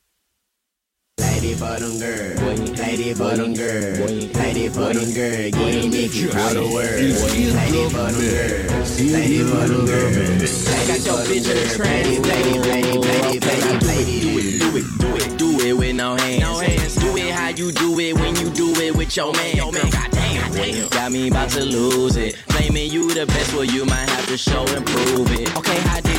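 A loud, continuous music mix with layered melodic tones and steady bass, growing more beat-driven in the second half with sharp, rhythmic percussion hits and no pauses.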